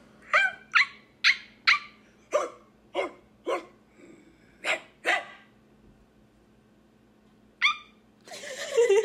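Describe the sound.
A person imitates a whimpering dog with a quick run of about ten high, tonal yelping whines. A pause follows, then one last whine and a short burst of rough noise.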